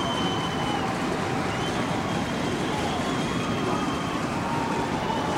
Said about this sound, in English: And listen to that crowd.